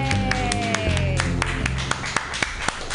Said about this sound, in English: All right, everybody, clap wildly.